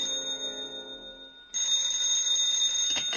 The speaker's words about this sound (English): And I fell asleep waiting. And then a bell exploded. At 2 o'clock in the morning, it couldn't stand it anymore, and it exploded.